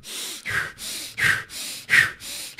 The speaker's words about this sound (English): So 15 minutes of just heavy, crazy breathing. Heavy, crazy breathing, yeah. And you like, how long are these breaths? They're fast. Give me a couple of them.